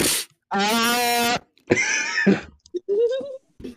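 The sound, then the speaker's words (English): A voice demonstrates exaggerated sniffling: a drawn-out whiny nasal tone, then a rough snorty burst and a short rising nasal squeal, all fairly loud with brief pauses between. “How do you sniffle?”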